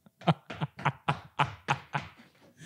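A run of about eight or nine dull knocks in a steady, slightly uneven rhythm, like a leg thumping against something hard and sounding much like knocking on a door; no talking.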